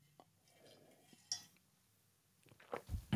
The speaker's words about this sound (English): By the way, sip of the day right there, right off the rip. That was a really good one.